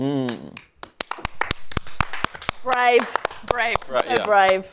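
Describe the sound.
A few people clap in sharp, scattered bursts for several seconds, the claps uneven rather than a steady round, while voices talk and exclaim over them.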